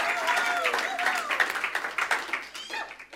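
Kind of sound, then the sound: crowd, audience applause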